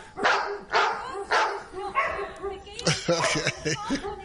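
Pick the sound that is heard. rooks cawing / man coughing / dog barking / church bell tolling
dog barking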